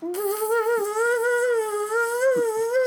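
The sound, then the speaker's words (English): A voice makes a steady, buzzing hum like a bee, imitating the sound a stingray might make, held continuously for about three seconds with a slight wavering pitch, fairly loud. “Sounds a little bit like a bee.”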